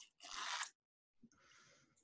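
A loud, crackly crunch of someone biting into a loaded potato, followed after a short pause by softer, sustained chewing and rustling noises. No one speaks.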